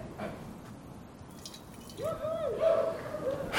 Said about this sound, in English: I know. I poured water in the pot.